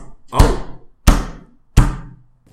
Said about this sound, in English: Was that a mysterious rap on the door?